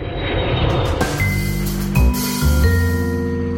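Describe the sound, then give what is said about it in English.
A heavy bus engine rumbles, its low drone stepping down in pitch as it slows, with a broad hiss of air brakes near the start. No one speaks. “A bus to a plane to a bus to a track.”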